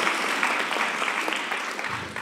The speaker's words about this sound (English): Yeah, let's give a round of applause. That's a really powerful, well done to you.